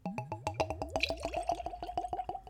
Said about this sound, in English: Okay, got my glass. Let's go for a pour.